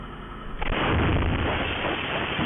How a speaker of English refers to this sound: The explosion rocked the 1700 block of 22nd Avenue in the Sunset District. These two people were standing across the street when the house exploded.